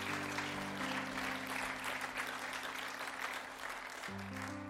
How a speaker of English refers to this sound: Would you give them another round of applause? Thanks, guys.